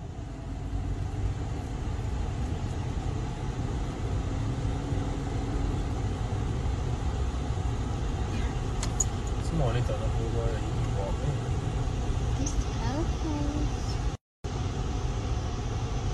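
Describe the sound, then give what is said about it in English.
A steady low rumble of idling car engines in a traffic jam on the Brock, with faint voices drifting in now and then and a brief dropout near the end. “And yes, we were like, first ever traffic jam on the Brock.”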